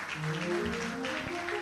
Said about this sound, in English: It's Jesus, so. It's Jesus you're clapping for. Amen.